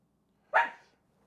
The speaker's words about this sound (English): My wife is here. My dog is barking. It's a typical day on this show.